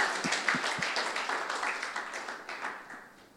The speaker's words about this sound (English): We all been chosen by God. Amen. Can we clap our hands and give thanks to the Lord for that? Amen.